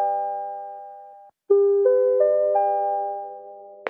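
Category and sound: signal or alarm, bells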